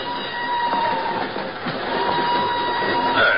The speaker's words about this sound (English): An hour later, she's aboard a northbound train rolling out of Lisbon.